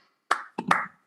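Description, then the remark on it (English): A single person claps a few times, about four sharp slaps at an uneven, slow pace, each leaving a short ringing tail before the next. “A round of applause from one person listening.”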